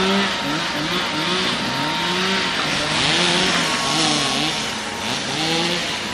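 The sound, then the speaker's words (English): Several chainsaws, operated by people clearing storm debris at a blocked intersection in Shenandoah, drone and rev together, their engine pitches rising and falling in overlapping bursts over a steady, loud roar, with no voices present. “The sound of chainsaws operated by individuals trying to clear debris at a blocked Shenandoah intersection drowned out a nearby church bell's playing of Jingle Bells.”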